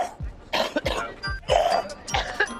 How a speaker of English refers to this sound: I don't know what's worse, getting coughed on by … or sitting in front of … hacking on me.